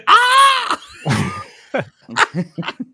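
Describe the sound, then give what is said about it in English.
A loud, piercing stock movie scream rings out for under a second, followed by a rough, breathy grunt and a few short, clipped vocal bursts. “Like, that's no longer the go-to scream. They've thrown it in a couple times.”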